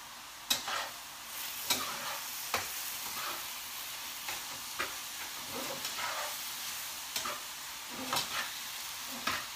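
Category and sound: food or drink, chicken frying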